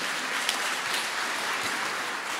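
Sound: audience applause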